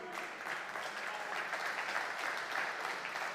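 A crowd claps steadily in a dense, continuous burst of many hands, sustained at an even level for the whole few seconds with no voices standing out.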